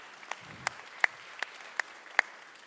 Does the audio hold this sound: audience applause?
yes